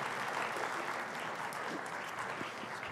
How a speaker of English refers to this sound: Clap for our interns. Thank them. They're going to do a lot of work.